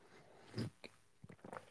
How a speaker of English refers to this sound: A little sip of the day.